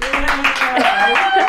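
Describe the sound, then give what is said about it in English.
A canned applause sound effect played from a newly installed applause button in a studio: a steady burst of crowd clapping mixed with cheering voices, holding at an even, fairly loud level for about a second and a half. “We just got a new applause button installed in the studio.”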